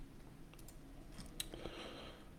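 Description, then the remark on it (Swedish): A few faint, sharp mouse clicks spaced irregularly over a quiet background hiss, with no talking, made while clicking around and reading on the Elite Prospects website. “Det är så ett gött avsnitt som är bara att du och jag sitter och typ klickar runt och läser från Elite Prospect.”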